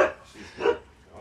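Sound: dog barking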